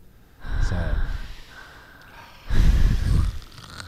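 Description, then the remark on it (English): Two loud, exaggerated snorting breaths, rough, separated by a short quiet gap; a person deliberately imitating noisy, heavy breathing. “Look at you breathing.”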